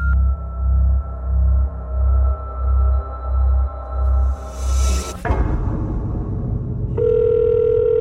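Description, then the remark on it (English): A telephone rings in a steady pulsing pattern, fairly loud, for several seconds, then stops with a sudden swishing burst, followed by a brief steady electronic tone. “Dude, it's a phone.”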